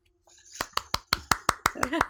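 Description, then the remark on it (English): A brief, small round of applause: about nine crisp claps in a quick, even rhythm, with a voice beginning to speak as the clapping ends. “Just a small round of applause.”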